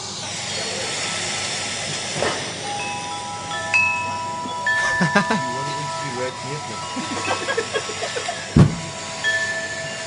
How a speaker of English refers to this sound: There's some wind chime sounds.